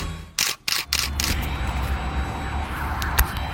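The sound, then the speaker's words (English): A camera shutter fires to take a photo in a quick burst of sharp mechanical clicks near the start, followed by steady background hum with a faint police car siren wailing. No one speaks. “All right, photo taken.”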